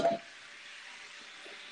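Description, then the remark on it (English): A water bottle falls, making one short, dull thump at the very start, followed by a low, steady hiss with a faint thin hum underneath and no voices. “My water bottle falling.”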